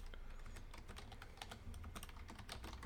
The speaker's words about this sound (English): Click clack. Right, you can hear the click clack of people furiously typing.